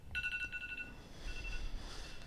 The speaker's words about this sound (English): Timer's going off.